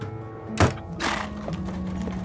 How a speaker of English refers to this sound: He wanted to be sure no one heard, so he grabbed one of the uniforms from downstairs to drive us. He and I stuffed ourselves unceremoniously into the back of a horse-drawn paddy wagon.